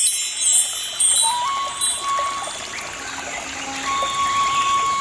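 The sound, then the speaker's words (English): Water flows steadily and evenly like a gentle stream, a continuous soft rushing at moderate volume with faint thin tones drifting above it. No one speaks. “Paradise is a walled garden with streams of milk and honey.”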